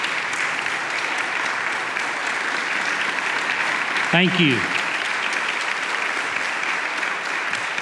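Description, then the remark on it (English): Sustained, dense applause from a large audience welcoming an archbishop as speaker fills the whole stretch, steady and loud, with a man briefly speaking partway through as the clapping continues. “please join me in a very warm welcome for Archbishop Kurtz”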